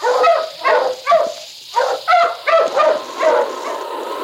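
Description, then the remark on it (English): King, Sergeant Preston's dog, barks repeatedly, about eight sharp, loud barks in a fairly steady rhythm, with brief pauses between them and no talking. “Now back to the days of the gold rush when Sergeant Preston and his wonder dog King battled through storm and snow to preserve law and order as they met the challenge of the Yukon.”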